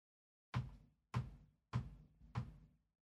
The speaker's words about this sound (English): But the first Kame housekeeping that we have to do is the world famous UN sanctioned 1 minute roundup bouncing ball sound.